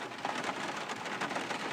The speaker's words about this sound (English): You know, it's raining, right?